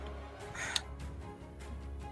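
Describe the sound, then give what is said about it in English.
A single harsh, crow-like caw rings out briefly over a low, steady background rumble, moderately loud. “I don't speak bird.”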